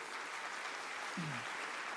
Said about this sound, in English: Who has started coming to our church in the last 12 months or so? Okay, hey, why don't we give these guys a huge round of applause? Hey, welcome.